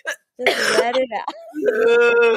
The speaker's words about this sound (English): Oh my God, are you having a coughing fit? Well, I'm trying to reserve it, but it's really hurting me. Just let it all out.